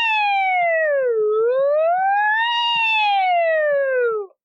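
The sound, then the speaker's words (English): The cartoon character Ralph, who wants to be a fire truck, imitates a fire truck siren in one sustained "woo" wail of about four seconds: it dips low, swoops back up, then slides down again and cuts off abruptly. Loud, with no talking. “Sorry, I just want to make sure you guys got the full woo experience.”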